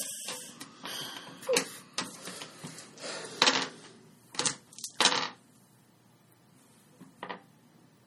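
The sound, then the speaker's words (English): Dice clatter and tumble across a hard tabletop in several quick bursts of sharp clicks, with a few scattered rattles trailing off and then quiet. “Stop rolling dice.”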